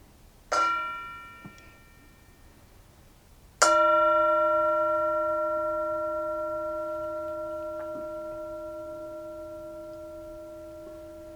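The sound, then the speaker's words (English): A bell is struck twice: a short first ring that fades quickly, then a stronger second strike whose clear, layered tone hangs and slowly decays for several seconds. “We hope you enjoyed this episode of The Mindful Storyteller, and we hope you enjoy the sound of the bell.”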